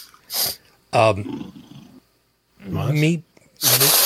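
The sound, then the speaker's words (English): Loud, breathy sniffs hit the microphone during a live broadcast at the start and end, with rough, growly voiced noises between them and a short silent gap in the middle. “if you could just not sniff into your bike while it's live.”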